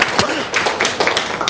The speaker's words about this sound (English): Biggest clap I've got all morning for her husband. For her husband.